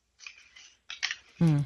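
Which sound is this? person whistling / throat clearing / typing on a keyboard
typing on a keyboard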